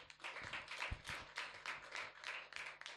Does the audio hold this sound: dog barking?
no